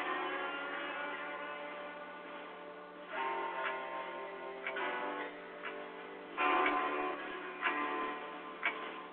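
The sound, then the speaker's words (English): A clock ticks steadily, sharp clicks spaced roughly a second apart, over a sustained, muffled droning tone; the ticks grow more pronounced partway through and no one speaks. “your time is running out. The clock starts now.”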